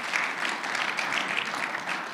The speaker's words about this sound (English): And the things that are done here are done for the glory of God. You can clap your hands on that. That's all right. Amen.